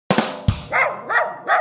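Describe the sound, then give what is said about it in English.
A voice imitates a dog barking, giving a quick run of loud woofs: two sharp ones followed by three shorter, rounder barks in an even rhythm. “Woof.”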